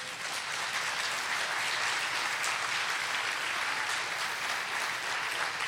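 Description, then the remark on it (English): A large crowd claps steadily and continuously, a dense, even wash of applause at full strength with no pause and no voices standing out, honoring people who serve through a mission base ministry in homes. “And I want to applaud your labors in the Word to break the bread of life.”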